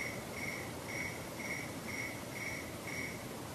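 A cricket chirps in a steady, evenly spaced rhythm, about six short trills over a few seconds, heard alone against a soft background hiss with no voices.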